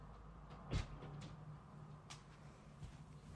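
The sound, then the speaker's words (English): A door is opened to let a cat in: one sharp knock-like thump of the latch, followed by a few faint clicks and creaks over a steady low hum. No voices. “Oh, I hear knocking at the door. I think it's the cat. You want to come in here? Come on in.”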